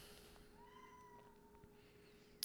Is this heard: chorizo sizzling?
no